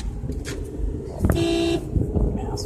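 A single car horn honks for about half a second in Arizona traffic, a steady nasal blare cutting through the low rumble of traffic, with faint murmuring voices before and after.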